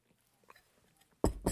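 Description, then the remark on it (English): A short, mostly quiet stretch ends with two loud, noisy slurping bursts in quick succession as someone sips tea. No one speaks. “Sip of tea before I dive in once again.”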